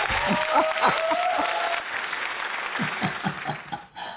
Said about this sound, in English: I think you deserve another round of applause for that.